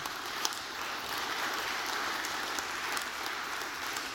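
A large audience applauds steadily as a clap offering to the Lord, a dense wash of many hands clapping at an even, fairly loud level with no pauses and no one speaking.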